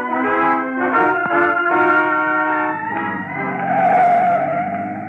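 A car drives by, its engine humming steadily, then the brakes squeal in a long, loud, high-pitched whine as it slows to a stop. No one speaks.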